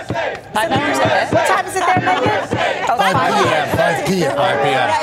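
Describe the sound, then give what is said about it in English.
A stadium crowd of USA fans at the World Cup cheers and chants together, many voices rising and falling in a loud, continuous rhythmic roar with shouted syllables throughout. “These fans are going to make sure.”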